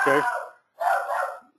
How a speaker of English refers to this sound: Okay, so my dog is barking. Can you imagine?